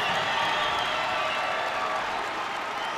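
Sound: basketball arena crowd cheering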